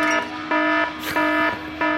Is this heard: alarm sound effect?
yes